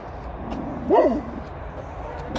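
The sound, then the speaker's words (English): A pig gives a single short, dog-like bark, clear, rising out of a steady low background rumble that continues afterward. “Oh, God, it's a pig. It's a barking pig.”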